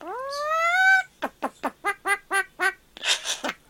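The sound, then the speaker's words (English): A talking bird mimics a chicken: one long, rising squawk, then a quick run of about seven clucks and a few raspy bursts, with no other voices. “What does a chicken say?”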